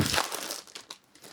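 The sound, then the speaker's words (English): A packet of nuts being rustled: crinkly plastic crackles in quick bursts, loudest at first, then settling into softer, irregular scrunching. No voices. “Get some nuts. Not that I know of. So, rustle away.”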